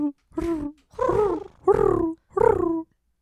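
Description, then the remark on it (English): A person imitates a pigeon with four throaty, cooing calls in steady succession, each a drawn-out voiced warble at a fairly loud level, separated by short pauses. “I'm gonna make a pigeon noise.”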